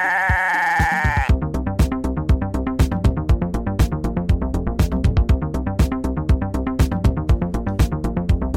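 A goat bleats loudly: a drawn-out, wavering cry that breaks into a rapid, stuttering tremolo lasting several seconds. No one is talking.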